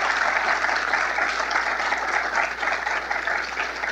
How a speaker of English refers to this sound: You could give her a round of applause if you agree with me.